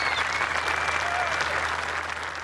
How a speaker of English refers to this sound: Oh, he has it. And listen to the roar from the crowd, which follows this young man around. Back-to-back birdies, three under par.